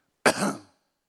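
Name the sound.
cough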